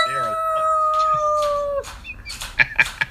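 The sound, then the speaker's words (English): A person imitates a coyote howl, for the NHL's Arizona Coyotes, holding one loud, steady, wavering note for nearly two seconds before it drops off, followed by a few short breathy bursts like laughter. “I'm pretty happy with my Coyote noise.”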